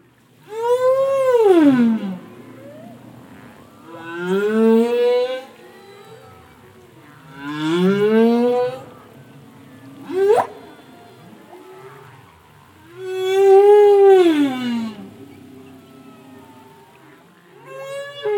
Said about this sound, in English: what a treat to listen to those humpback whales.